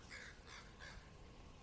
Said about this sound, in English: So right now I'm seeing like two crows ahead of me. I don't know, can you hear it?